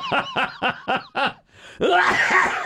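A loud coughing fit: five quick, rhythmic hacking coughs in a row, then a brief pause and one longer, raspy, strained cough. No one speaks.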